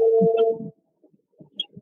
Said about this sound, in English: The sounds that come from your phone are so weird.